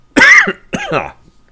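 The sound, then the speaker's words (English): Two loud coughs in quick succession, each a raspy voiced burst with a strained, theatrical quality, as if acted out by a person, followed by brief quiet. “So you do that, and he coughs a few more times.”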